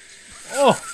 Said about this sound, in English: I didn't realize you did a real bassy burp. Oh, the face that accompanied it was wild.